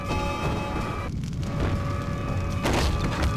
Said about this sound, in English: Knock over the grandfather clock. Whoops, I didn't want to do that.